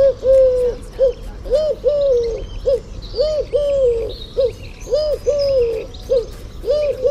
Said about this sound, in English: Is it a cuckoo? It's not a cuckoo. It's a collar dove. Collar dove it is.